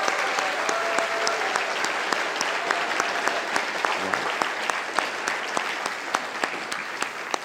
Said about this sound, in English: So could you just give them a round of applause as those that have led this ministry?